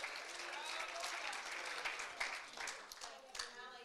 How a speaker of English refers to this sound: Come on, let's clap our hands unto the Lord. Shout with a voice of triumph in this place.